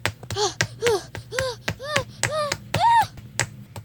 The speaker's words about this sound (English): Oh, there's this big rack of test tubes. Whoops, I think I knocked those over.